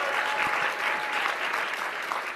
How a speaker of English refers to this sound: Hey, everyone. Okay, let's have a round of applause.